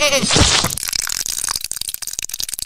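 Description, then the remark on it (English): A loud, nasal goat bleat bursts out at the start, followed by a quick run of crackling, rattling clicks as the sound effect fades out. “Oh, that's the goat boost.”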